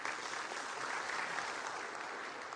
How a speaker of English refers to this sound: I'm going to give them a round of applause for helping us this morning.